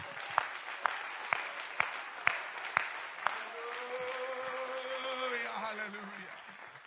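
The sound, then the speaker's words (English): An audience claps hands in praise of the Lord in a steady unison beat, about seven sharp claps, then breaks into loose, continuous clapping and cheering while a sustained voice rings out above the crowd. “Oh, let's give the Lord a hand clap of praise here tonight.”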